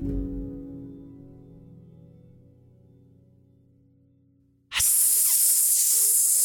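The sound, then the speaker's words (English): A low, droning tone slowly fades, then a voice abruptly lets out a loud, sustained hiss imitating a snake, holding it steadily for about two seconds until the end. “I wanted to do a fun snake sound”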